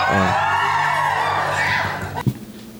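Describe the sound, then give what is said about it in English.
A crowd-whooping sound effect played from a soundboard: a crowd whoops and cheers loudly in a sustained burst, rising pitched yells over a dense roar, then cuts off abruptly near the end with a short thump. “That's normally the makeout sound, but. I didn't see my quick applause button, so.”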